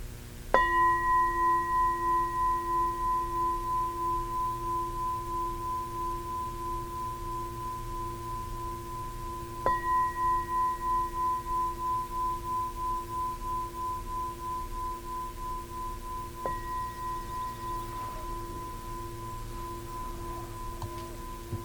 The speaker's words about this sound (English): As you hear the bell, being fully present and receptive for the sound and for knowing hearing.